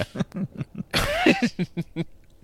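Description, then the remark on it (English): A man's wife coughs once in the background, a short rough burst that cuts through a steady stream of conversational speech. “wife coughing in the background.”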